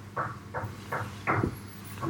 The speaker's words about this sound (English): So I think we have monkeys next door or something knocking at the windows or something. We do.